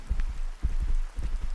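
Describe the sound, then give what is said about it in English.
Cold rain falls steadily, turning dust to mud: a dense patter with irregular heavier drops landing over a low, rumbling wash. No voices can be heard. “The rain is cold, turning dust to mud.”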